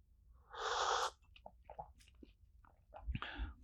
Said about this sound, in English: Let me take a sip of tea.